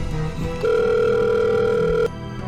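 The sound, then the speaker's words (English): A telephone rings for an incoming call from Henry Ford, with a steady electronic tone, starting with a brief, quieter lead-in and then holding one loud, unbroken ring for about a second and a half before cutting off abruptly. “We knew he was going to call. Of course, of course. Ring, ring. Ring, ring.”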